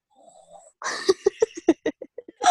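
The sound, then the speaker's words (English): A voice imitates snoring, a fairly loud run of short rattling snorts in quick rhythm, after a faint breathy lead-in and ending on a longer nasal snore. “And you just fallen asleep and started snoring.”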